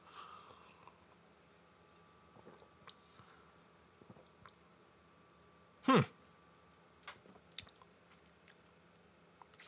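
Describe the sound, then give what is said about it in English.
One brief sip of a spicy, punchy blonde beer cuts through midway, surrounded by small wet mouth clicks and soft swallowing noises. No one speaks. “I'm going to sip some, see what happens.”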